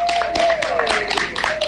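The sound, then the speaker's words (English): Audience applause, played as a substitute for music: a crowd claps in a dense, steady burst of overlapping hand claps, fairly loud and sustained, with a faint tone running underneath. “That was a very nice applause”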